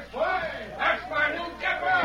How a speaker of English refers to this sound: Oh, they're cheering for you, Dave. Gee, the sheriff's told them all about you. You mean the people of Wayne are cheering for me? Just listen to them.